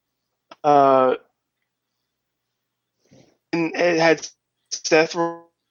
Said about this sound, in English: You're having a little bit of internet trouble, I think.